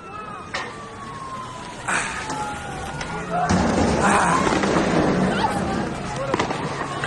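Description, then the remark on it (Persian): Several sharp gunshot cracks ring out at irregular intervals over a noisy street protest in Parand, where protesters blocked the street with stones and trash bins, with people shouting, a young girl crying out not to be afraid of them, and a steady roar of voices growing louder partway through. “در این ویدیو صدای تیراندازی شنیده می شود و صدای دختر جوانی که فریاد می زند از اینها نترسید.”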